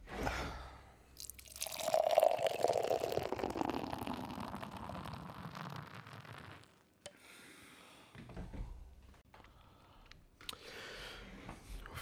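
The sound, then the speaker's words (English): Citra Solo IPA, a juicy West Coast style IPA at 6.4 ABV from Lee Dog Brewing Company, glugs and splashes as it pours into a glass for several seconds, the stream fizzing and fading, followed by quieter clinks and light handling noises with no talking. “And let's get right onto the fucking pour, man.”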